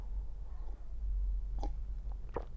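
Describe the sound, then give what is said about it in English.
Quiet sipping of water from a pink seahorse cup, with two short, wet swallowing clicks about a second apart over a low, steady hum. No one speaks. “And take a sip of water for the ASMR fans.”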